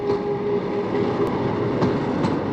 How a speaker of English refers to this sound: Oh no, there is another locomotive.